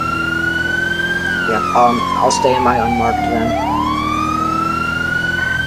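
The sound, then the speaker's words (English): A loud emergency siren wails steadily throughout during a pursuit in Grapeseed, its pitch sliding slowly down and then back up, while a person speaks briefly over it partway through. “I'm confused, I can't hear over to the sirens.”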